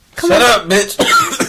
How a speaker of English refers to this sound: Yeah, don't cough into the mic anymore, please.